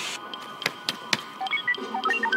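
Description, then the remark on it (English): A voice, that of the character Anakin, imitates the droid R2-D2, giving a quick run of short, high chirping beeps that jump up and down in pitch, with a few sharp clicks near the start and no words. “And Anakin, not like doing an imitation of R2-D2's voice, but the physical actual R2-D2 sounds come out of Anakin's mouth.”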